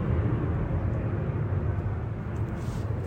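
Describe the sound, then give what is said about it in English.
A steady, loud low rumble of an airplane passing overhead fills the whole stretch, a broad droning roar with no breaks and no voices. “actually as this fucking plane flies over, I'm going to take a sip of this Keystone.”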